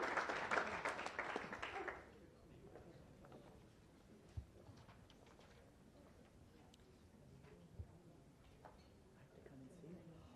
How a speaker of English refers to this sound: All fundraising committee members, please stand up. We should have a round of applause. They did really good work and raised a ton of money.